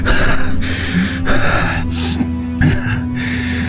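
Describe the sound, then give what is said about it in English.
A voice imitates heavy, gasping breaths, several loud rasping inhales and exhales in a rough, uneven rhythm with brief pauses between them. “And he kneels down, breathing heavily.”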